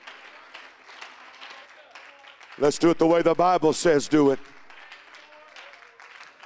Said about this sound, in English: Clap your hands unto the Lord, everybody.